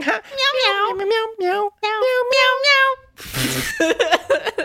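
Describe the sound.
A cat meows several times in close succession, loud, with wavering drawn-out cries, followed by a brief breathy hiss-like burst and a few more shorter meows.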